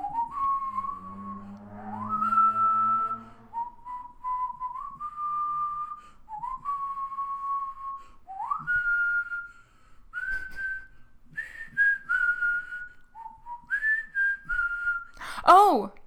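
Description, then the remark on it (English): Someone whistles a song melody, holding a string of sustained notes that step up and down, with a few breathy gaps and a squeaky high attempt at the end. “All right, this is the one I don't think I can whistle.”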